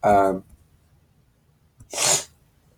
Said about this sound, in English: I got the sniffles if you haven't noticed. Nah, it's just allergies with all this weather changing.